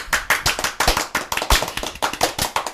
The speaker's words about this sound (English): Everybody clap for him.